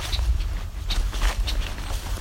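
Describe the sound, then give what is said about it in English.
Several short, sharp check calls of male and female red-winged blackbirds pop out at irregular intervals over a constant low rumble of wind or movement. “Red-winged blackbirds ahead.”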